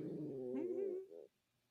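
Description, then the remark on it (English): A cat lets out a low, drawn-out growl that rises into a whiny, tonal yowl before cutting off, fairly loud, with no talking over it. “That's Zelda. Was that? Why are you growling?”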